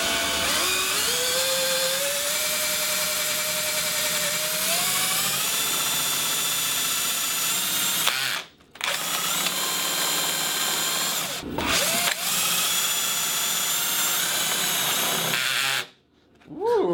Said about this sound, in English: So we got the biggest drill bit we could find. Yeah, we got a half inch drill bit, so it's good for wood or metal and whatever's inside a computer.